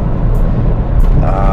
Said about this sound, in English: I probably 4 out of 5 times I'm going to do this just in my little runaround car, which currently, the one that I'm in right now that's making all the noise because it's not that well soundproofed, is a little Mazda 2, affectionately known as Maxi.